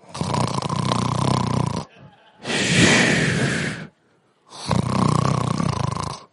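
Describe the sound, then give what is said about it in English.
A voice imitates loud snoring: three long, rasping breaths alternating between a rumbling inhale and a breathy, hissing exhale, prominent with short pauses between. “That's some holy snoring right there.”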